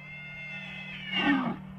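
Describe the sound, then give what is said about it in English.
A male elk's bugling call rings out, a sustained high, whistling tone that swells into a louder, rougher burst near the end before cutting off, heard alone. “That's an elk making noise.”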